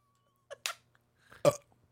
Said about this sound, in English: It was an aggressive burp.